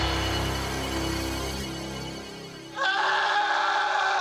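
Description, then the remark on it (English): Three people scream together, loud and sustained, shifting in pitch, then break into an even louder, shriller burst of screaming for the last second or so. “The three of them scream for some time.”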